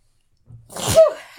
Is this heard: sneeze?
yes